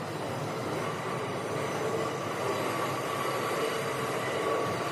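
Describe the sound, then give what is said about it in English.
A New York City subway train heading uptown toward West 43rd Street near Times Square rumbles steadily along the rails, a continuous, fairly loud roar of wheels and carriage noise with a faint high whine, and no voices. “I really hope you're paying for my subway card here.”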